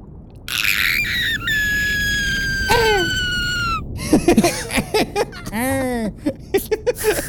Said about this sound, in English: But as all this is happening, there's suddenly a blood-curdling scream from somewhere in the compound.